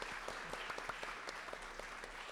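A crowd applauds steadily, a dense wash of many hands clapping with sharper individual claps popping out irregularly, sustained at an even loudness throughout with no voices over it.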